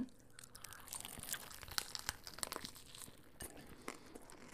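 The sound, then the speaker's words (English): Crunchy munching on a breaded snack with a crusty outside, with crinkly, crackling bites and irregular chewing clicks repeating steadily over a few seconds, no talking. “Which one are you having first before you munch?”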